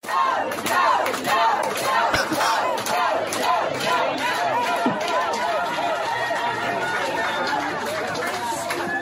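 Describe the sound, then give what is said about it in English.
A large crowd of parents outside a packed school board meeting shouts and screams "no, no, no" in a loud, continuous roar of overlapping voices, with sharp thumps of fists beating on the windows scattered through the din, heaviest in the first few seconds. “parents, many of whom were not able to get into this packed house school board meeting, who are outside, start beating on the windows and screaming, no, no, no, when her name gets brought up.”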